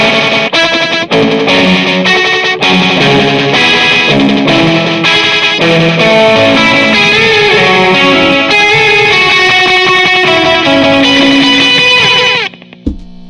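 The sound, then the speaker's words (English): A loud electric guitar riff from a song, played through a multi-delay effect on an Echo system. The notes repeat and stack into a dense, shimmering wash, continuing steadily for about twelve seconds before cutting off abruptly. “I have this multi-delay on the Echo system that I love because I haven't been able to find anything else that does it.”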